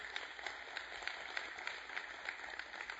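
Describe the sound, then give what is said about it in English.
A crowd applauds steadily for about three seconds as an assistant comes up, a dense wash of many hands clapping at once, fairly soft. No one speaks over it. “You all give Bruce a big hand clap as he comes.”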